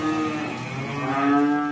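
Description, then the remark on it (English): Cows on an organic farm in Nalier, western France, mooing at 7 in the morning at breakfast time as the farmer's tractor brings feed, in a steady, drawn-out chorus, their low harmonic calls overlapping and swelling slightly louder toward the end, with no talking. “When the cows hear the organic farmer Jan Doob's tractor, they trot to the wall around their stall”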